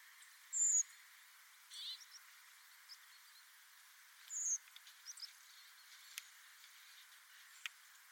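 Two kinds of thin, high bird calls, a blackbird's and a redwing's, sound side by side twice, each brief note separated by quiet, faint hiss with a few soft ticks in between.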